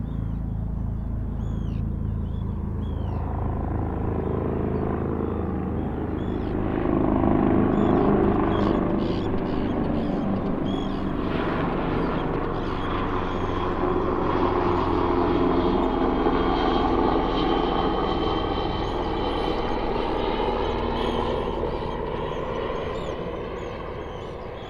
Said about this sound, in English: And in such a quiet place, human-made sounds made a bigger than usual impact, as I found one day when a helicopter flew into the fjord right above my head, its deafening roar ricocheting off the mountains.